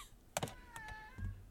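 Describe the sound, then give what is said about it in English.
A couple of soft knocks, then a faint, drawn-out meow from a cat trapped in a room, holding a fairly steady pitch for nearly a second, followed by a dull low thump. No one speaks. “I could hear the cat.”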